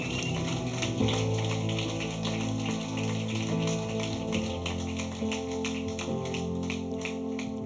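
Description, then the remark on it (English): Audience applause for people who stood up and came forward: a steady, dense patter of many hands clapping at once, sustained throughout at an even loudness, with a low musical hum running underneath. “Can we give them a clap?”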